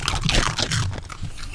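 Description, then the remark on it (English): Crunching and chewing as dogs munch hard treats, a rapid series of loud, crackly bites and wet smacking with no one speaking. “wonder if we could put the microphone down there so they can actually hear the schmack, schmack, schmacking.”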